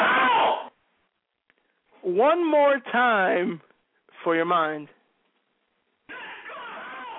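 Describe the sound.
A man screams in anger in three loud, strained bursts with wavering pitch, separated by short silences; someone speaks briefly before and after the yelling.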